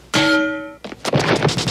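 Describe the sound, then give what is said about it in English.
In a Weird Al film scene, a rubber frying pan whacks Bobo the clown's face with one loud metallic clang that rings out in a steady, bell-like tone for about half a second, then gives way to a brief jumble of softer noises. “rewinding over and over and over again the part where Weird Al hits his buddy in the face with the frying pan.”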